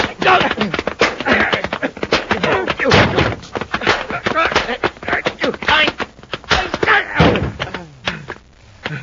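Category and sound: impact, punches landing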